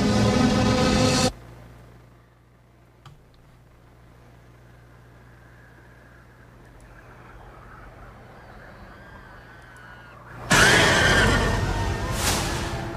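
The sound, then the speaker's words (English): A horse whinnies sharply inside a loud, booming burst of cinematic sound in a film trailer, after a long hushed stretch of low droning rumble that follows an equally loud opening hit. “That horse didn't look happy.”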